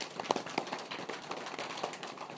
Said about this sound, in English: Good, look back forward. Unwind your arms. Just pat your legs.